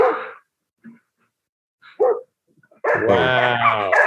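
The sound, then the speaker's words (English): A big, deep-voiced dog barks a few short times with pauses between, then lets out a longer, loud, drawn-out bark. “Do you see his dog? Do you see that thing? That's like a dire wolf.”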